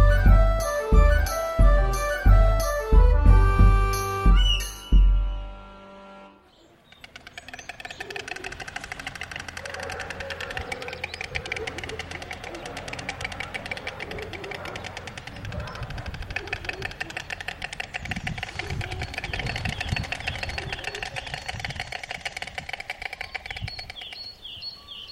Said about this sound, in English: These are sounds made by storks. Storks are large, long-legged, long-necked, white, wading birds. Their long beaks are red, and so are their legs. Storks have no syrinx, which is typical of songbirds, and therefore they're mute.